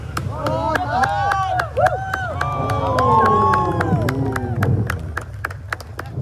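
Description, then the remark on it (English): A golf gallery at a Pro-Am on the 18th hole erupts in loud cheers as Tua Tagovailoa's shot out of the bunker lands on the green right by the hole, many voices whooping and shouting together, with sharp scattered claps punctuating the roar for several seconds. “You hear that crowd going crazy?”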